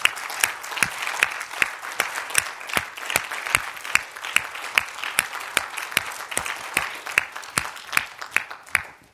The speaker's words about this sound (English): And let's just stand together if we will. And let's give the Lord a hand clap of praise, saints.